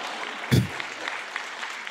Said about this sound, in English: Like, if you're going to clap, clap. Don't give me a petty clap.